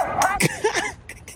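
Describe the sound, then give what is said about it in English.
A tiny dog lets out a few quick, high-pitched yappy barks, with short whiny yips in between, then two brief sharp bursts near the end. “Nope, it's just a tiny pooch with a bark clearly bigger than his bite.”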